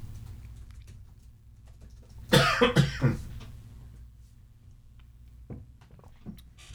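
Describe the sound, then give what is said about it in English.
A quick burst of three harsh coughs, followed by a couple of faint throat sounds over a low steady hum, with no talking. “I did not think I'd be coughing this much.”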